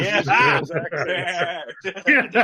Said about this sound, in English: We do not condone the poking of goats. We do not abuse animals. We do not go to poke the goat. Again. Please leave the goat alone.